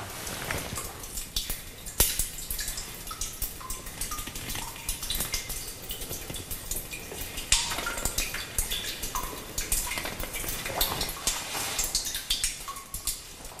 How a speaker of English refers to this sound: Very peaceful, just that little drip of the water.